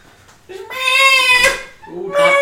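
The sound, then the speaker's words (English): A cat yowls loudly in long, drawn-out wails: one sustained, wavering cry lasting about a second, then a brief dip and a second yowl starting. No one speaks. “Your cat is going nuts.”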